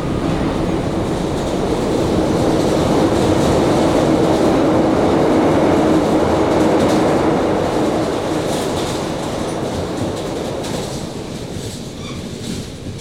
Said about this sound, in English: And that would be another train. How often do they come through here? How would I know?